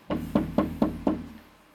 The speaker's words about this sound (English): Sunday morning. It's a knock on the door.